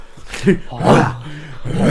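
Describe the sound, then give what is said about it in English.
A person mimics the dog from a film with a few growly, whining vocal bursts that run together over two seconds, rising and falling without any actual words. “The only bit of the film that I actually did like of The Grinch was with the dog like...”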